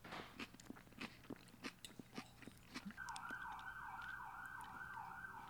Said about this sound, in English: There goes a siren.